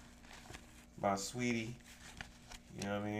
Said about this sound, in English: If you can hear it, there's cash being counted in the background